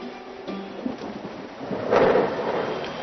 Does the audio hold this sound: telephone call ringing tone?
no